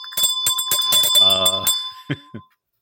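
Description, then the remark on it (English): A small bell rings rapidly, struck about seven times in quick succession with a bright, lingering metallic tone, while a voice briefly sounds over it before a couple of softer knocks. “But before that, I think it is time to beg for a like, a subscribe, and perhaps a ringy ding of that bell.”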